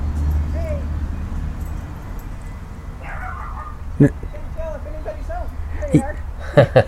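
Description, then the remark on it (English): A dog lets out a few short, sharp barks scattered across the last few seconds, over a steady low background hum with faint murmuring voices. “No barking.”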